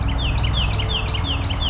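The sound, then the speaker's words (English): Golden-crowned kinglet giving its high, thin triple ring call, with short descending notes repeated in quick groups over a steady low rumble of traffic noise. “Hearing the triple ring of golden crowned kinglets as well.”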